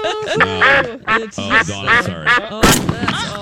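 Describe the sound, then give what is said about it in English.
A run of loud, nasal duck quacks follows one another closely, then a sharp gunshot-like bang of duck hunting cuts in near the end, followed by a couple more quacks. “Well, when a duck gets in the studio, you got to take care of it.”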